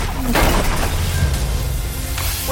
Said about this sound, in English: Was that the gunshot? Who is shooting?